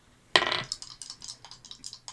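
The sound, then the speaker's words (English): Dice rolled on a table with advantage for a persuasion check in a tabletop role-playing game: a sharp clatter as they land, then a quick run of bright, fading clicks as they tumble and settle, fairly loud with no talking. “Roll with advantage.”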